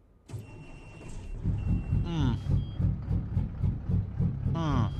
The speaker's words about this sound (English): But now we have my logo on the doors of a truck in a game that I play every week. That's pretty flipping awesome. Let's start that engine for everybody. We ready for this?